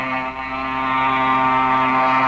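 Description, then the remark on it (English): A propeller airplane engine drones loudly and steadily as the plane takes off, its rich, buzzing harmonic tone swelling slightly as it revs up, with no talking over it. “Why is the plane climbing so slow and struggling so hard?”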